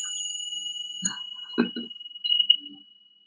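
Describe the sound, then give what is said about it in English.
Small chimes, rung to clear energy, ring with a steady, high, bright tone that sustains throughout, with a few soft clinks and knocks partway through and a brief louder shimmer near the end. No one speaks. “They were clearing energy, so I bought myself some little chimes, whatever.”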